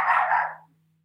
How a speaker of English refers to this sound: And that's Daisy May. I can tell their barks apart.